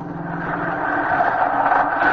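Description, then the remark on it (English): A bus engine rumbles steadily, a continuous droning hum that swells slightly as the bus pulls up, with no voices present. “Ah, the bus.”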